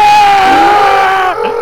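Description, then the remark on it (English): A stock escalating scream sound effect, used in the old Command & Conquer video games: one loud, sustained, piercing cry with a steady, slightly sagging high pitch that breaks off abruptly near the end into a short ragged tail. “Like, that escalating scream. That's one that's been used a lot.”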